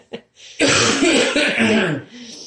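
A loud cough muffled into a hand, a harsh, raspy burst lasting over a second, preceded by a small brief catch of breath.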